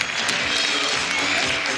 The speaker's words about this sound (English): You're listening to the end of a typical fashion show. There's beautiful models strutting by, people clapping.